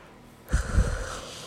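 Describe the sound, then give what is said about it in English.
A tired person yawns: a sudden drawn-in breath swells into a long, breathy, slightly strained exhale that carries on steadily, with no talking. “No, I'm yawning.”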